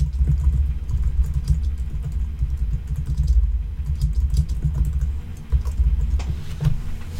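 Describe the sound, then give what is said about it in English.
Irregular, fairly rapid clicking of keys on a computer keyboard over a steady low rumbling hum with no voices. “Oh, that's you typing. Sorry, yes, I was typing.”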